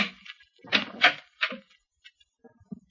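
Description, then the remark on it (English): A stateroom door opens with a few quick, creaky clunks and rattles of the latch and hinges, followed by softer knocks as it settles. “by the time she opens the door, I'm prepared for anything from Tugboat Annie to the Medusa”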